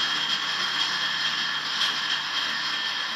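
A blender crushing ice runs steadily and loudly for the whole stretch, a harsh, rattling mechanical whir with a gritty grinding texture and no voices over it.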